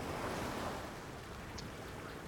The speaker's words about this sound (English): Continuing through the long spit of land, you hear the lapping of waves from the fjord itself.